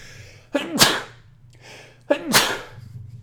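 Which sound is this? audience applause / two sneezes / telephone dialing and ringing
two sneezes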